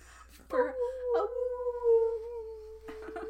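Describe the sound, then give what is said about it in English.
A person mimics a dog's howl with one long, steady, drawn-out note lasting a couple of seconds, fairly loud, with brief breathy sounds before and after. “Borking. Bork, bork. A howl.”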